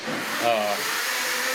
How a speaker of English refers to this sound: Sorry, we got a blender in the background.